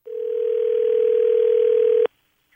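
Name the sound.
telephone line ringing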